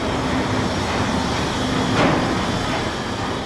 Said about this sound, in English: And that is pretty much a straight up recording of the cement factory that was behind our studio space, you know, where lorries are driving in and out every day getting cement.